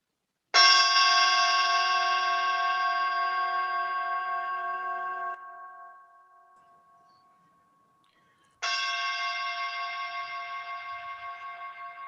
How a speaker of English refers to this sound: So I'll now ring the bell or recite the practice principles, and then we can move into the period of witnessing.